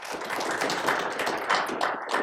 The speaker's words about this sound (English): Thank you. That's the most applause we've gotten in a while.